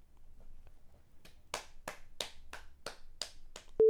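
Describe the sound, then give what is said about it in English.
A string of sharp, evenly spaced claps or snaps gives way to a sudden loud, steady, low-pitched censor beep over swearing that cuts in right at the end. “I've started beeping it now instead of silencing it so people know more when you're doing it.”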